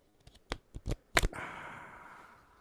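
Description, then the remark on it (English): Playing cards are shuffled: a few sharp taps and snaps of the deck, then a brisk, sustained riffling whir that fades gradually. No voices. “Welcome to card shuffling.”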